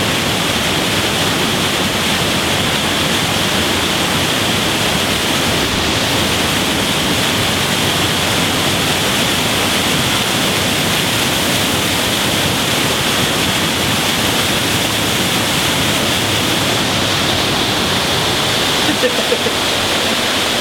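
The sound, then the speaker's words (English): A loud, steady roar of rushing water from a nearby waterfall at Fazenda Cachoeira in Minas Gerais, Brazil, a dense unbroken wash of noise that holds constant for the whole stretch with no pauses. “basically I'm here in Cachoeira, in Brazil, in Minas Gerais, and I thought I'm going to be doing the In My Mug on this in the future, but what a great way to do the start, right by the waterfall, cameraman.”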